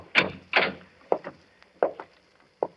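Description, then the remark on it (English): A heavy wooden cellar door, unlocked, is opened with a couple of loud knocking thuds, followed by softer creaks and clunks as it swings, with no talking. “You see, it's unlocked, as he left it.”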